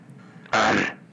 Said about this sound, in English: He's always clearing his throat.